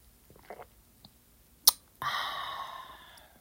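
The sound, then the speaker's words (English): A quiet sip of coffee from a glass coffee cup: a few soft mouth sounds and a sharp little clink, then a drawn-out airy slurp lasting over a second. No one speaks. “I'll take a sip while you ladies grab what you need so I can unload and you can learn and hopefully I can inspire.”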